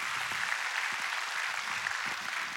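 A crowd applauding steadily, a dense wash of many hands clapping at once, sustained and fairly loud throughout with no voices standing out.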